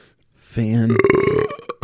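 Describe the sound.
A loud burp lasting over a second, starting with a low rumbling croak and shifting into a raspy, voiced belch that breaks up at the end, after eating a spicy taco.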